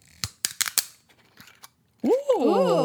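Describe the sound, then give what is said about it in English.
A quick burst of sharp, snappy cracks as a corkless bottle of White Zinfandel wine is twisted open, followed after a brief pause by a loud, drawn-out exclaiming voice. “So shall we crack and crack dive it.”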